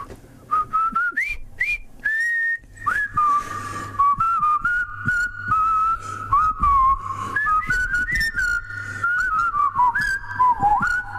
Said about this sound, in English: Bit of whistling.